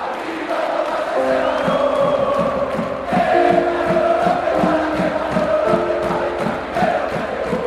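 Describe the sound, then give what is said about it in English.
A large crowd of sports fans sings together in unison, a loud, steady chant with held, droning notes over a rhythmic pulse of claps or stomps, continuing for several seconds. “The sound of fans singing in unison.”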